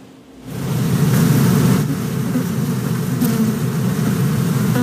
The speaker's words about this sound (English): It sounds like a lot of bees there. Yeah, yeah, each hive is about 80,000 bees in it.